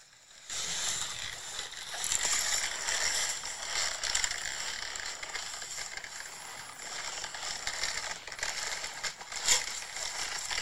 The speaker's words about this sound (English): that's the creaking of leather we were talking about before that I like